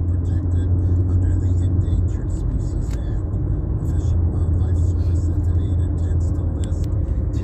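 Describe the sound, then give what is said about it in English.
A silver Dodge pickup truck with a paper plate drives through the intersection of G Street and Mountain Avenue, its engine a steady, low rumble that holds at an even loudness throughout, with faint higher ticking and hiss layered over the road noise. “This is crossing path, as I veer up to see that paper plate, BM44D24. It's a silver Dodge truck.”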